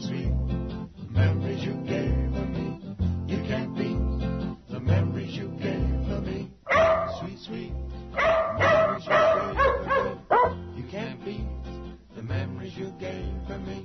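Dogs bark and yip in rhythm over a steady musical backing, their barks pitched to carry a sung melody in a novelty song, loud and continuous throughout.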